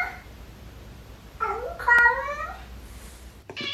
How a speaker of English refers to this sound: When that cat made that sound, they vomited right afterwards. Oh. That was always that.